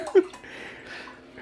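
Liquid pours steadily into a glass as a drink is refilled, a soft continuous splashing hiss lasting over a second after a brief low clink at the start, fairly quiet.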